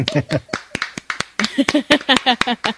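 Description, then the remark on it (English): A short round of applause: about ten sharp, crisp claps at a loose, uneven pace, mixed with voices talking and cooing over the clapping. “So I want to give you a little round of applause.”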